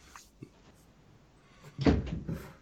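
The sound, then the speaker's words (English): A small click, then a door is opened to let a pet in, with a brief rattling, thumping clatter lasting about half a second. Nobody speaks. “She does, but she's also on the outside of the door. I'm gonna let her in.”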